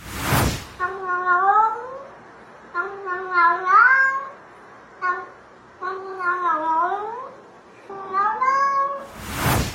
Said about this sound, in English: I know many of you will be so thrilled to know that coming up, … has yet another talking cat for us.